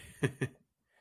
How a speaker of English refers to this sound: I don't know if you can hear my fat ass breathing like this, but I'm getting taste. I can taste it when I do that. Yeah. I always like, I do that too a lot of times when I drink, especially with bourbon.